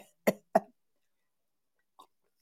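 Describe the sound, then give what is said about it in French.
Two quick, small coughs follow each other closely, short and light, then a pause broken only by a couple of faint, brief sounds near the end. “La petite tousse.”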